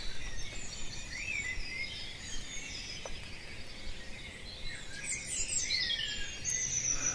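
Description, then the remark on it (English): Male blackbirds sing from several different spots at once, usually fairly high up in trees, their fluting phrases overlapping over a steady outdoor hush, with no one talking. “So you're hearing lots of male birds singing from their different spots, usually fairly high up in the tree, because the sound gets across.”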